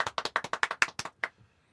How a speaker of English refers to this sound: Oh, man. I thought for a second, in this second intro, yeah, that you guys weren't going to clap, and I swear I had already committed to hanging up.